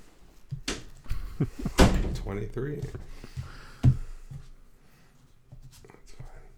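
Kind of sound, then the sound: household object, door being shut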